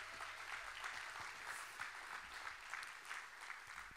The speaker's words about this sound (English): How many grateful for spiritual leaders that are empowering our lives? Why don't we give them a big old clap?